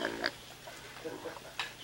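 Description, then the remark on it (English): Arnold, a family pot-bellied pig, grunts: a couple of sharp, squealy bursts separated by softer, low snuffling grunts over a quiet background. “This is Arnold, the family pot-bellied pig.”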